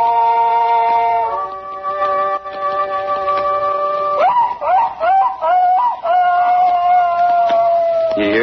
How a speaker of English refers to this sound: Just a hound that's baying in the night, you might say. Just a dog that's chasing a fox. But to my paw, that was the sweetest sound this side of heaven.